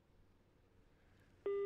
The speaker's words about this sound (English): Well, his phone is actually ringing, so that's certainly a good sign.